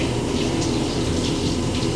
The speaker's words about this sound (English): Hey, if we shower together, we have 12 minutes of this. Dang it. Over on the speaker says you have 1 minute left. This shower is really short.